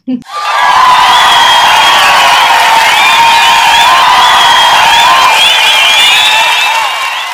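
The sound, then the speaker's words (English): After a countdown of 3, 2, 1, a group of voices bursts into a loud, sustained scream of "We're in love" all at once, holding the shrill, overlapping yell for about seven seconds before it begins to taper. “So whenever you're ready, guys, go ahead and do a countdown and then We're in Love scream.”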